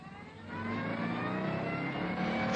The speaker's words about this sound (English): We got about 20 yards down the deserted village street when we saw the car outside the pub. A fast sports car. Keys in the ignition. I got behind the wheel